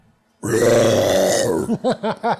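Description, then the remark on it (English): A loud, drawn-out, croaking burp sound, seemingly faked deliberately by a voice, lasting about a second, then four quick, evenly spaced voiced bursts. “I feel like it sounded like I burped, or at least I faked it.”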